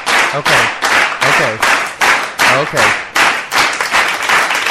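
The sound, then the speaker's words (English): A live crowd claps and applauds loudly and steadily for several seconds, with scattered voices and cheers mixed into the noise and a short spoken word near the start. “Oh, we got a lively, lively crowd.”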